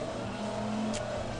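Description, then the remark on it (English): A high-torque car's engine drones steadily and loudly throughout during a race, a low, rumbling motor tone that swells slightly as if revving, with no voices over it. “This is a torquey car, man. You're going to have to feather the throttle.”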